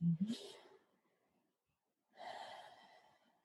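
Slow, deep breathing during a guided breathing exercise: one long airy breath trails off into a quiet pause, then another drawn-out breath follows, soft and unhurried, with no talking.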